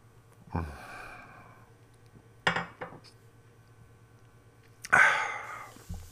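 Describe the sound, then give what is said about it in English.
A deep, audible breath out, then a couple of sharp glass clinks and another heavy, sighing exhale as someone takes a sip of Rav, an 8% strong ale from Carton. Low hum underneath, no talking. “Deep breath leading into a sip of beer.”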